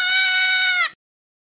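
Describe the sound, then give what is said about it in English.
A single loud bleat from a male goat, held steady for nearly a second with a strained, buzzy tone before cutting off into silence. “What used to be the sofa but is now a goat seems to be eating them.”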